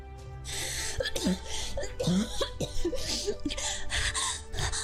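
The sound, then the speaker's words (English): A person coughs violently and sputters, expelling water from her lungs, gasping for breath between harsh, wet bursts, loud with no talking. “And with a violent cough, Olive expels the water from her lungs.”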